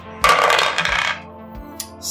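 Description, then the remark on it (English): A die is rolled for a stay sharp roll in a game, clattering onto a hard surface with a bright burst of rattling, then settling with a few fainter taps. No one speaks. “I'm going to make you do a stay sharp roll as kind of a follow-up to this.”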